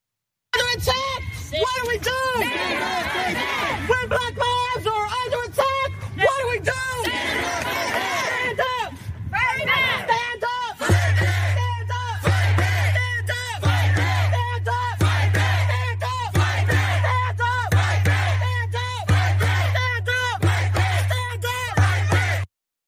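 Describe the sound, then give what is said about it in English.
A massive crowd shouts and chants in unison outside, gathered in front of the home of a man who shot a 16-year-old neighbor, in Kansas City, Missouri; voices overlap loudly and continuously, with a steady low rumble joining in partway through. “Yes, that scene was from Kansas City, Missouri this weekend when a massive crowd gathered in front of the home of a white man who shot a 16-year-old black neighbor.”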